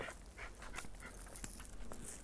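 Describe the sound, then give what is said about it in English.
A big dog pants and snuffles in short, repeated breaths over a steady low rumble of background noise, with a faint whimper, fairly quiet, no talking. “whoa, that's a big dog.”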